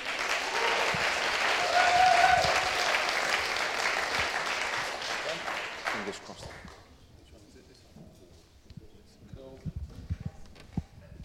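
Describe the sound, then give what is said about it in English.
A crowd applauds loudly to encourage a speaker as he comes up, with dense, steady clapping that fades after about six seconds, leaving scattered claps and soft shuffling sounds. “Well, I've already had a round of applause, so I may as well just sit down now.”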